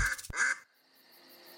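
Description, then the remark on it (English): A duck quacks twice in quick succession, loud, the nasal calls ending abruptly and leaving a faint, quiet background. “Her family quacked with relief and delight.”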